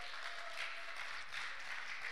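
A church audience applauds steadily to honor its pastors, many hands clapping at once into a dense, even wash of noise that holds at a constant level for the whole stretch, with no voices rising above it.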